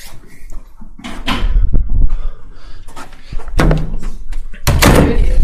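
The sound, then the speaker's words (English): A door at a small museum is pulled shut with a few heavy thumps and rattling knocks spread over several seconds, followed by clattering sounds as it is locked, with no talking. “I'm going to go back around and lock the door that I came through.”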